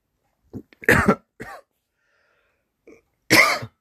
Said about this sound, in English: Okay, I think that's the limit of how much I can talk without coughing.